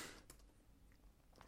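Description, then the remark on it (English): A few soft, scattered keystrokes click on a computer keyboard, quiet, with brief pauses between taps and no voices present. “I can fucking hear you typing, idiot.”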